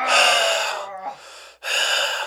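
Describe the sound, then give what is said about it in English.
A voice imitates a drunk person's heavy, raspy breathing: a long loud breath, a brief pause, then another harsh breath, loud with no talking. “You know how drunk people breathe heavy?”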